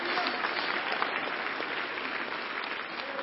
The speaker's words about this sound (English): Give the Lord Jesus a hand clap of praise for that.